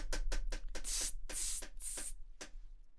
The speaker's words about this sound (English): Fucking hell, what a mess. Stop spraying that now.